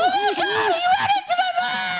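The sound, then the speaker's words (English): A voice imitates children screaming after a car crash, with high, strained wailing cries that rise and fall continuously for a couple of seconds, loud, with some babble-like vocal noise mixed in. “And then you hear like kids screaming like, somebody help me, please.”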